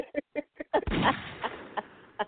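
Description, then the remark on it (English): Rapid gunshot sound effects: a quick series of sharp cracks, then a heavier blast with a rumbling, echoing tail, and a few more scattered shots trailing off. “Stop with the gunshots”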